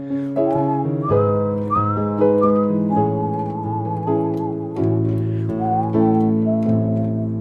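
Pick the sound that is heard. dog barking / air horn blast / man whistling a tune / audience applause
man whistling a tune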